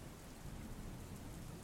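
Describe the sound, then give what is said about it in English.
Steady, dense rain hisses throughout, with a low continuous rumble of thunder underneath; no voices, just the constant wash of a storm at even loudness. “The city's heartbeat pulsed through the rain-soaked streets, each drop of water a whisper of secrets waiting to be unraveled.”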